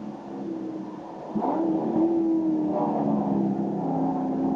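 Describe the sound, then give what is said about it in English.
A race car engine revs hard under full throttle as it runs out of the elbow and along Conrod Straight towards the kink, passing a slower-class entry. It is a steady loud mechanical drone that jumps up in intensity partway through and holds a rising, sustained pitch as the car accelerates. “And it's got a very good run out of the elbow.”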